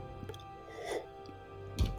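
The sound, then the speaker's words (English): A couple of soft, wet slurping noises from someone sipping wine, a gentle one partway through and a sharper gulp near the end, with a steady low hum beneath and no talking. “Just take another sip.”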